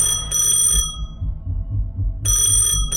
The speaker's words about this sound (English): Is that a phone? Oh no, it's the people from the Repel Spray Company.